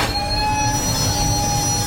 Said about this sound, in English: The train stops before the trestle. The people on the train are nervous. We don't stop trains in the middle of the desert, but it just happened.